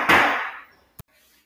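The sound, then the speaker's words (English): Two knocks on a door by the Spectrum guy: a heavy, booming thud that rings out and fades, followed a moment later by one short, sharp rap, with no voices. “that was the Spectrum guy knocking on the door just now.”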